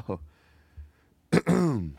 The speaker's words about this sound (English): I need a minute or two to work up these coughs to get the really big cough. Ooh, I'm even getting phlegm now.